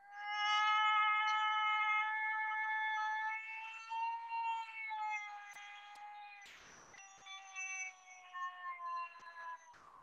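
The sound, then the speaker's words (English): A high-pitched female howl call from a howling competition, the call that won it: one long, steady, tonal note held for several seconds, then a series of shorter wavering, sliding notes, with no talking. “The second one is a female that's in a competition.”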